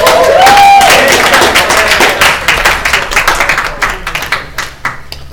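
A crowd applauds to welcome a speaker up, with dense, loud clapping that gradually thins out into scattered individual claps toward the end, with a brief whistle near the start.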